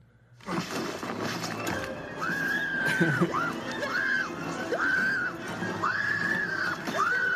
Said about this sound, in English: It's a 28-second scream. It keeps going.